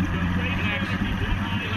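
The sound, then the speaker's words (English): A motorboat engine rumbles steadily as the boat quickly backs out to tow a 93-year-old barefoot water skier, a continuous low droning throb that holds the same loudness throughout without pausing. “The boat quickly backs out,”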